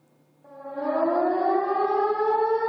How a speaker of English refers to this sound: Sirens. They named it Nuclear Alarm, so I just wanted to know what that was.